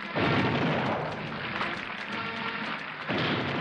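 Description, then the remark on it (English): Two heavy cannon booms about three seconds apart, each swelling into a long, rumbling roar that lingers and echoes outdoors, part of the 21-gun salute at Richard Nixon's second presidential inauguration. No one speaks. “And now he's up there smiling, and they're doing the 21-gun salute, the cannon, boom, boom.”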